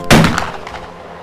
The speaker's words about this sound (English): that sounded like... A gunshot. I can't tell from which direction it came.